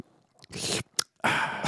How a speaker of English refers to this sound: But yeah, look at that mug. And my, yeah. Here comes the famous slurp.